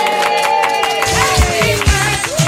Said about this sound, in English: I'm clapping myself.